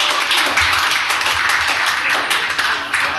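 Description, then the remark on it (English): A comedy show audience claps in response to comedian Ben Cromer asking those whose parents are divorced to clap. The overlapping claps form a steady, dense wash that stays loud and even for about three seconds, with no one speaking over it. “Clap your hands if your parents are divorced.”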